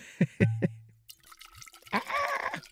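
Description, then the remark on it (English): A few glassy clinks and knocks, then an unlabelled agave spirit is poured into a glass, a short gurgling pour with a rising ringing tone as it fills. “I almost perfectly poured this mystery agave spirit.”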